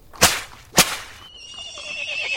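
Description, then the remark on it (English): Two sharp cracks like a whip snap in quick succession as a cab driver whips up the horse, then the cab horse lets out a long, wavering whinny as the cab sets off for Norwood, with no voices. “Whip up, cabby.”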